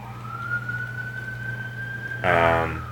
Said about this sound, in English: there's our trademark New York siren. Yeah, that's how you can. That's a our part of the fabric of our podcast.